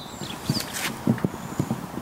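Hooves of working horses that plough the land at Weald and Down clip-clop in a steady, uneven rhythm, with a few sharp hits standing out over a quiet outdoor background, on an overcast afternoon.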